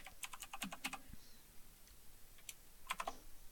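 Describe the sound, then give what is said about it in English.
Rapid clacking of mechanical keyboard keys in a quick burst, then a pause and a few more sharp keystrokes; crisp, with no voices. “Oh, this sorry, I'm a true gamer with a mechanical keyboard, so it's loud.”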